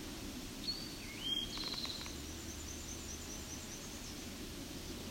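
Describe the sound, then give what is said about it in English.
A faint, distant black-and-white warbler song: a brief run of thin, high squeaky notes, mostly buried under a steady hiss of background noise, with no voices present. “So at the distance, that long warble likely to be a black and white warbler.”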